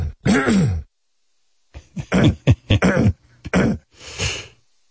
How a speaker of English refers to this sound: clearing his throat so he can talk to the king.